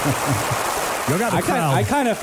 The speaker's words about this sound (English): I felt like that was smooth. I felt like I deserved the applause.